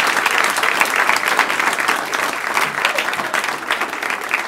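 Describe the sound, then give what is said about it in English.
Sustained audience applause for Matt Kirschen, a dense steady wash of many hands clapping at an even, loud level throughout, with no talking over it. “Keep it going for Matt Kirschen.”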